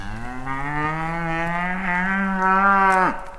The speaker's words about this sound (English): Maybe being moo-bushed by giant horned cows themselves. Turns out the path we're on was made by the aurochs. A half dozen of them appear out of nowhere. Think of fighting bulls, just up to three times bigger. They stop right in front of us.